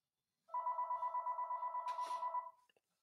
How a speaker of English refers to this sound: Tell you, I forgot to grab the phone, pardon me. And this is the studio phone too, so this is bad because I don't even know how the fuck they even got the number here. Well, at least there's only 3 rings.